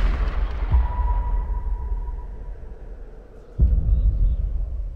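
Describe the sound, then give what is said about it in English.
Two rifle gunshots, a lighter crack early on and a heavier boom a few seconds later, each followed by a deep rolling rumble that trails off. No voices. “The rifle is an extension of me.”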